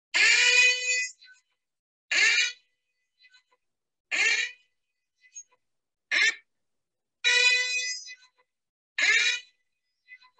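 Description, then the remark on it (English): A siren sound effect played from a YouTube video blares in six short, loud, buzzy bursts with brief gaps between them, a harsh honking rhythm with no one talking over it. “But that siren basically means we've got some memorabilia to look over.”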